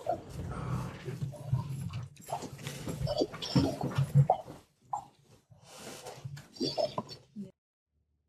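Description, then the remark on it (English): A dog whimpers and whines in short, uneven bursts, moderately loud, with brief pauses between the cries before falling silent at the end. “Dog problems.”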